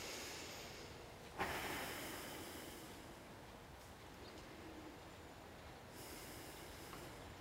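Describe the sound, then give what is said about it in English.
Slow, deep, soft breaths of a person holding a low hip-opening stretch, with a long airy exhale swelling up and fading, then a quieter stretch before another breath begins. There is no talking, only a faint steady background hiss. “I'm just staying down, feeling the openness of my hips, the length of my spine, and breathing.”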